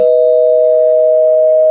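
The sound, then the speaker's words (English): A loud, bell-like electronic tone rings out alone and holds steady at one pitch for nearly two seconds without fading, a sound-effect chime used as a mild spoiler warning. “That Star Wars, bum, bum, bum, mild spoiler bell.”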